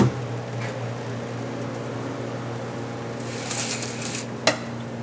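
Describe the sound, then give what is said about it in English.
A large double-door restaurant refrigerator, used as a hibernaculum for Wyoming toads, hums steadily with a low electrical drone, then a brief whooshing rustle and a sharp click come as its door is pulled open. “This is our hibernaculum right here. It's a fancy double-door restaurant fridge.”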